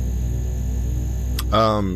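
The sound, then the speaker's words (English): A steady, droning electrical hum from sickly yellow overhead lights in an oblong room fills the space without pause, broken near the end by a sharp click and a brief burst of someone's voice. “The same strange, sickly yellow light. The same humming from above.”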